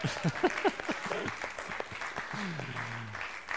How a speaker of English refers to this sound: We clap for each other in the NCR because we need it. I need it. I need encouragement.